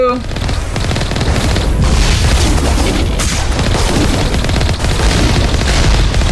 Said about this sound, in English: Wow, they're shooting a lot of rockets at us.